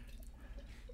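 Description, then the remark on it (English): Beer is poured in a steady, quiet stream for the whole second, with soft gurgling and a few small bubbly blips over a low background rumble; no one speaks. “Can you pour my beer?”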